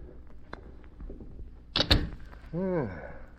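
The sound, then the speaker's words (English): A door that has just been unlocked opens: a sharp latch clunk and rattle, followed by a short, rising-and-falling hinge creak, over faint room noise. “Open the door.”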